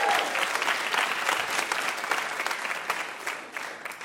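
A game show audience breaks into sustained applause for a contestant, a dense, steady patter of many hands clapping for several seconds without any talking over it.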